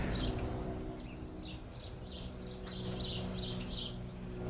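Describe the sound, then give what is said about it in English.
A bird chirps in a quick series of bright, repeated notes in a city, over a steady low hum of outdoor background noise, with no one speaking. “now we'll have a moment of silence to start. Let the bird speak.”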